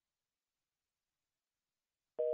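telephone busy signal

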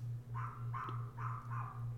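neighbor's dog barking

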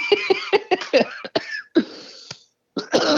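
coughing fit

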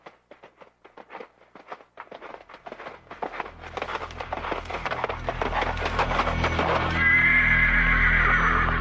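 horse neighing

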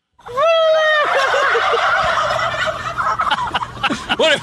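turkeys gobbling

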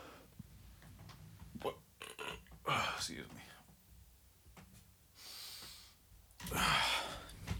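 burp

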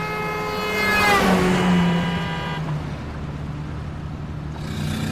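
car driving

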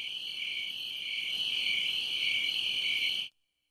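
crickets chirping

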